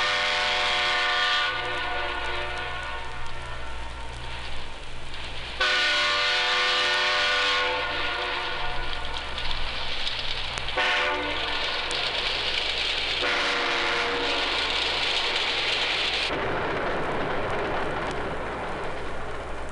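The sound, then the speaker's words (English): A loud train horn sounds in a series of long, sustained blasts with brief breaks between them, over a steady rumble of a moving train, the old Cannonball, as it leaves the station and blows its horn at its first train crossing. No one speaks. “As we leave the station and come to our first train crossing, we blow the horn to let everyone know, here we come.”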